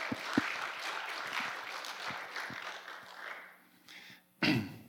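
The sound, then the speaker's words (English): A church audience claps steadily for people coming up onto the stage, in a dense, moderately loud wash for several seconds, then the applause thins out and fades, with one sharp burst near the end. Nobody speaks. “You can clap for them as they come up.”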